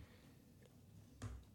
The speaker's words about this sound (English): Sorry, I coughed there.